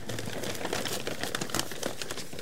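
Brown packing paper crinkles and rustles continuously as bundles of human bones are unwrapped on a table, a steady stream of dry crackles with a few sharper snaps, no voices present.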